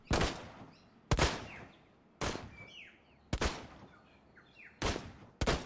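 Six loud, sharp gunshots ring out at fairly even intervals, each crack trailing off in a decaying echo, while birds chirp faintly in the gaps between shots.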